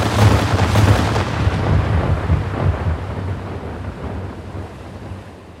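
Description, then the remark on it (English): A heavy, rolling boom of ship's cannon fire, aimed at a Skaven boat and blowing it out of the water in a single fusillade, rumbles loudly and sustains for several seconds, slowly fading like thunder, with no voices present. “The gunnery sergeant's aim was true, and it blew the Ratman's vessel out of the water in a single fusillade.”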